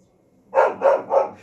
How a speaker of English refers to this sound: Sorry about that, just had to deal with a puppy.